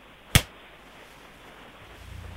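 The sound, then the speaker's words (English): A single sharp, fleshy slap of a hand against a shoulder, loud, followed by quiet background tone and a faint low rumble near the end. “Here comes slap number 2.”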